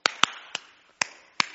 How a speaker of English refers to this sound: But if I'm the only one clapping, it's going to sound something kind of like this.